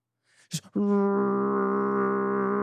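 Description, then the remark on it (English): A bathroom exhaust fan clicks on with a brief rattle, then settles into a loud, steady, droning hum with a buzzy tonal edge that holds without change. “Right, that's the bathroom fan.”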